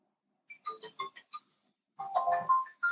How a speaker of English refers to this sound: And that's our 5-minute timer. Open your eyes.